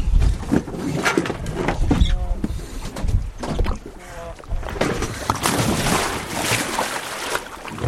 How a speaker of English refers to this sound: One by one, four divers plunge into the wind-wrinkled water.